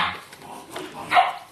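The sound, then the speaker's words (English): A dog being dog-sat in a house barks a couple of times, short sharp yaps at the start and again near the end, with no one talking over them. “Dog noises.”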